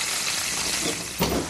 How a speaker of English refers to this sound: I just saying that the fish is ready to come out of the fryer.